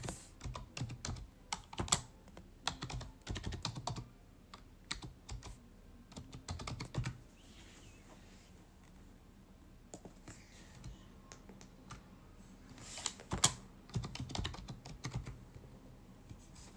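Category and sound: household object, keyboard typing clicks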